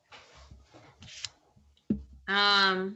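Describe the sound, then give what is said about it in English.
A microwave gives a single loud, buzzy electronic beep lasting under a second. Before it come scattered soft clicks and a sharp thump. “as the microwave says in the background.”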